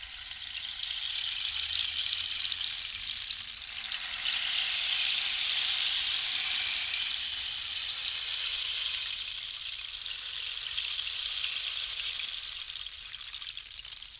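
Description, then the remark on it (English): A rain stick pours out a steady, bright rushing patter like falling rain, swelling slightly in the middle before easing off, with no voices over it. “You should insert the sound of a rain stick here.”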